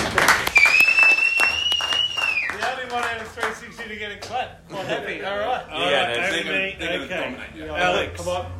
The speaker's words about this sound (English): To get a clap. I'm happy.